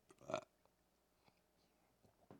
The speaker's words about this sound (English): Sorry, I'm belching.